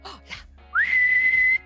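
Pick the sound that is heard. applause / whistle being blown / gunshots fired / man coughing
whistle being blown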